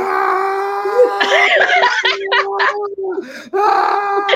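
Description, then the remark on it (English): A loud voice lets out a long, strained power-up yell imitating a Dragon Ball Z Super Saiyan transformation scream, holding a steady pitch for about four seconds, broken by breathy, gritty bursts. “It's all about screaming.”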